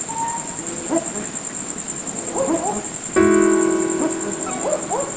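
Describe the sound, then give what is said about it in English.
Two barking owls in a backyard in Darwin, on Larrakia country, give short, doubled woof-like calls in a few bursts over a steady high insect drone, with a brief louder harmonic sound midway. “From a backyard in Darwin, right into your ears, it's a set of barking owls.”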